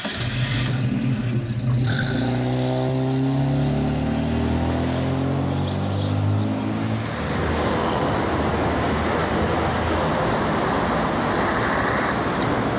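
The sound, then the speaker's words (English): A Volvo car engine hums, its pitch sinking steadily as the car slows, then settles into a rough, steady rumble as it parks outside a large modern office block. No one speaks. “Jerry parks the car outside a large modern office block.”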